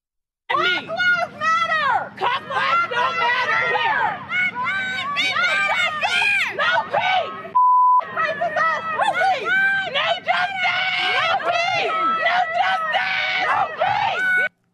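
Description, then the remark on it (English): A loud crowd of protesters shutting down traffic in Pittsburgh chants and shouts together almost without pause, with chants such as "No justice, no peace", many voices overlapping in a rough rhythm, broken once midway by a brief steady beep. “You hear they're chanting?”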